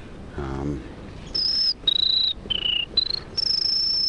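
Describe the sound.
A person whistles an imitation of a buzzy warbler song, such as a prairie warbler or black-throated blue, with a string of five high, buzzy whistled notes that step down and then up in pitch, the last held longest, after a brief low hum.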